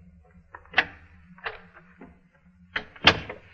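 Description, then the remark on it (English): A door opens as someone enters, with a few sharp clicks and knocks, like a latch and handle being worked, followed by a louder double clack near the end. There is no talking. “You have a way of coming in without being announced.”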